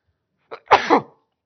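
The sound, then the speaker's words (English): A single sharp sneeze with a quick inhaled buildup, then a loud burst that trails off within about half a second. “Bless you.”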